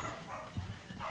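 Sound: dog barking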